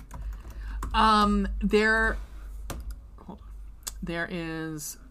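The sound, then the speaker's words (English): Scattered clicks of typing on a computer keyboard, mixed with a voice making drawn-out vocal sounds over a low background hum. “I was just, I thought I was typing into a tab, but I was not.”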